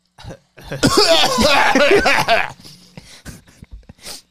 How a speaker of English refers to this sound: Then I heard some light coughing.